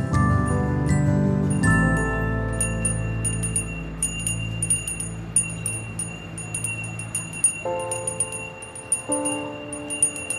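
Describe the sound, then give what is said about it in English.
A Salvation Army charity handbell, rung outside a place of business for the Red Kettle campaign, rings over and over in a quick, steady rhythm, its bright, high clangs standing out above a sustained low tonal drone. No one speaks. “For decades, the Salvation Army has stationed themselves outside places of business and rang a bell.”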